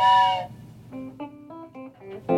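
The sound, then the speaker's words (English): A voice imitates a train whistle, opening with a loud, breathy blast and then a string of shorter wavering hoots that rise and fall, ending on a final sharp burst. “Then they heard me say this. And that was the last thing they heard. Was the train whistle.”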